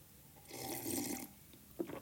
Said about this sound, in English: Okay, now I'm gonna sip it.